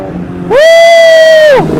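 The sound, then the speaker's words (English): A fast car roars past on a track with a loud, high engine whine that sweeps up, holds steady for about a second, then drops in pitch as it passes, leaving a low background rumble. “Should we give him the thumbs up when he goes by?”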